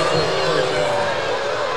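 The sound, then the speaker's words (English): The Adelaide basketball crowd reacting to an offensive foul (a charge) called on Rob Lowe: a loud, dense roar of many voices that holds steady and unbroken from start to finish. “Adelaide crowd hate it.”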